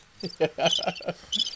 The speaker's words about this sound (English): Oh, wrong button. I'm hitting crickets and shit.